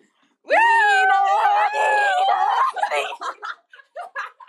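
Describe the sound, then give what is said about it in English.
A voice imitates a fire truck siren, holding a loud, wavering wail for about two seconds, then breaks into short, choppy bursts that sound like giggling. “This is a fire ambulance or fire truck? Fire truck, yeah.”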